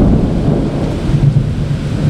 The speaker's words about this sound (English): in South St. Louis, and it is an absolute downpour out here. I actually have to move because I'm starting to get a little wet. Just constant lightning and thunder and cicadas screaming. This is kind of our summertime soundtrack here.